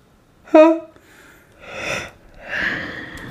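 A drawn-out yawn from someone getting cold and tired: a short voiced groan at the start, followed by two long, breathy exhalations that trail off.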